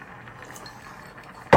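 Rice simmering in a pot, with a soft, steady bubbling and faint irregular pops, then a sudden louder burst of noise right at the end. No one speaks.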